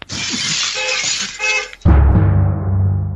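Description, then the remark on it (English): A car window, broken by a man throwing things at cars, shatters loudly in a bright, crackling burst of breaking glass with tinkling fragments for nearly two seconds, then cuts to a heavy low thump and a deep, droning rumble. “He's throwing shit at cars and breaking windows.”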